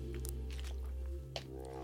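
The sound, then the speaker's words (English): A few soft, wet mouth sounds from someone sipping water, with a brief sharper click near the end, all over a steady low hum and no talking. “Let me get a sip of water.”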